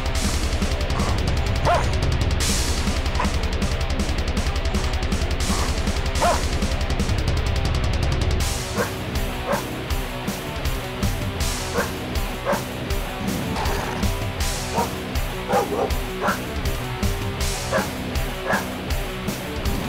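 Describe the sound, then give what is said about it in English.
Loud, dense hardcore-style heavy metal with pounding drums and distorted guitars, where the vocals are dog barks and yips, repeated in rhythmic bursts over the music; no speech. “Now, if I cringed with circus metal, what should I say about dog metal?”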